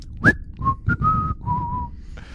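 A person whistles a short tune, a quick rising note followed by several clear, held tones that step down in pitch, with no talking.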